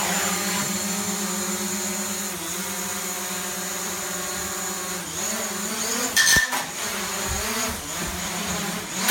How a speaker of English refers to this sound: Well, we had another crash. I mean, this is full of crashes this week. Boy. I mean, like, this is so many crashes. The drone.